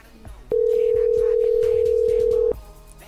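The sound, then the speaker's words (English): A call being placed to a cell phone: a single loud, steady telephone tone holds for about two seconds, then cuts off, with faint background noise around it. “Let's try let's try his cell.”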